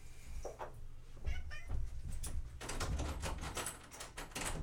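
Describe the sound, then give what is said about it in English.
A cat named Lucifer, which was chewing a cable, meows a few times, its cries mixed with sharp rustling and clattering noises that grow busier toward the end. No one speaks. “Fucking cat was chewing my cable.”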